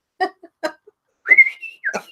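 Someone whistles: a few short breathy chirps, then a bright sustained note that wavers and glides before a final quick chirp. Fairly loud, with no talking.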